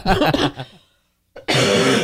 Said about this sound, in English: So maybe one day I'll get over this cough. That would be nice.